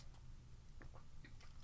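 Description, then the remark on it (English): Someone sips lime-flavored Perrier carbonated water from a liter bottle, making a handful of short, wet mouth clicks and gulps spaced unevenly over a low steady hum, with no talking. “I love carbonated water. And this is probably, in fact, let me take a sip right now.”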